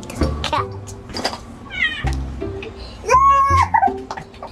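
A kitten meows a few times, first in a faint, high, wavering cry, then in a louder, drawn-out meow, over a low, steady background hum with scattered soft knocks.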